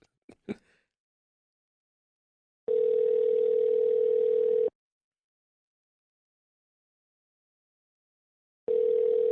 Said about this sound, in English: It rang longer this time, so I think he just sent me the voicemail the first time.